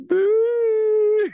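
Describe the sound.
A person voices one long, lilting, whimpering hound howl, holding a steady, slightly wavering tone for about a second before it trails off. It is fairly loud and stands alone.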